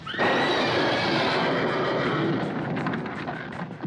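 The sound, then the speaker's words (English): Loud, dense horse cries fill the whole stretch, several high neighing calls overlapping in a sustained burst, agitated, from horses in a stable spooked by the name Frau Blücher, with no talking. “In a stable, trying to calm the horses spooked by the name...”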